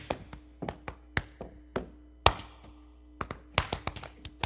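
Sharp hand claps, a group clapping along with a leader, land at uneven, unpredictable intervals, some bunched close together and others spaced apart, with no steady beat. A low hum sits underneath and nobody speaks.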